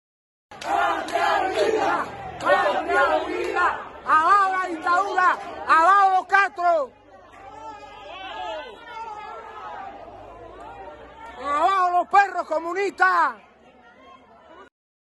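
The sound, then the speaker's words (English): Tens of thousands of Cubans protesting in the streets against the communist government in Cuba chant and shout in loud, rhythmic bursts against dictatorship and Castro, many voices rising together with sharp cries, then dipping into a murmur of babble before surging again near the end. “Tens of thousands of Cubans are risking their lives today by taking to the streets in defiance of a communist”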